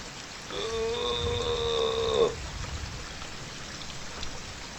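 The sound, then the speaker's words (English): Steady rushing water of a river flows without pause, with a brief sustained harmonic tone sounding over it for about two seconds early on. “I tell you what, I do like being here, but the river, you know, the constant river, it just makes me want to pee.”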